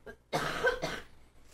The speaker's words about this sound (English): I had to cough. That's pretty good cannabis that we've got there. Yes, it's an OG Kush.